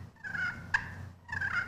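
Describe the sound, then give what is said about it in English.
A turkey call makes a content cluck and purr: two soft, rolling purrs separated by a single sharp cluck, clear with no talking. “I call it a content cluck purr. So it's a purr first.”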